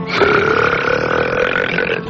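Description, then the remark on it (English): A long, loud burp stretches over about two seconds, a steady guttural drone with strong resonant tones, unbroken, with no talking around it. “No shame, no guilt, no more tummy rumbling, smelly belches, no more stopping in mid-sentence to uncork a big cheesy blaster.”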